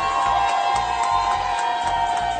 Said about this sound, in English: In New York City, we have never had a mayor that supports small businesses like this mayor, that supports restaurants like this mayor. So please give Mayor Eric Adams a round of applause.